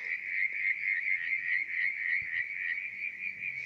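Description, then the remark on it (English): A dense chorus of frogs croaking and trilling nonstop at a mountain tarn, a small lake in the mountains, a steady high-pitched pulsing drone at moderate volume with no breaks and no voices. “The tarn is like a lake in the mountains, and these are the frogs.”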